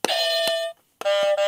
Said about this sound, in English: So we've got our buzzers, so we just test them.